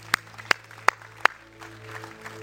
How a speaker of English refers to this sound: And everybody said, can we give him another hand clap of praise? Can we do it?